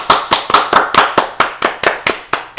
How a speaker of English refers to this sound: This is the kind of shit that I want to see from Nike. Can we get them a round of applause?